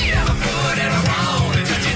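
Loud, continuous cat yowling and meowing with sweeping, wavering pitches, a couple of strained cries overlapping for a couple of seconds, with no talking.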